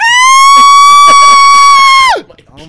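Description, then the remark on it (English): A voice imitating a really scared dolphin lets out a loud, piercing squeal, holding one shrill steady pitch for about two seconds before it slides down and breaks off. “I can do a really scared dolphin.”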